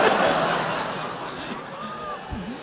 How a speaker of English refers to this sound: Oh, that's got to be the Wheel of Time panel. Oh, yeah. Okay. Yeah, okay. I don't know if you can hear it on the recording, but the panel next to us cheered really big.